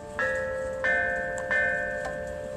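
Ancient Chinese bells, from a set unearthed by archaeologists in China and dating back to the 5th century BCE, ring out in four struck notes at a slow, steady pace, each bright metallic tone sustaining and overlapping the next, moderately loud, with no voices.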